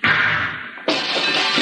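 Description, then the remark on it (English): A loud blast bursts open the lock of a control room door off a steel corridor, its harsh noise sustaining briefly before a second crashing burst follows and rumbles on. No voices are heard. “I'll have to blast the lock.”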